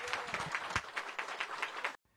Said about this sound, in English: Well, I want to thank you all for your attention. Let's give our guest Ariel a round of applause.